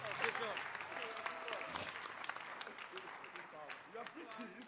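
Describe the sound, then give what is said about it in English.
An audience at a church service claps hands in a steady, dense patter that fills the whole stretch, with voices talking and calling out over the applause. “You can clap your hands if you feel like clapping.”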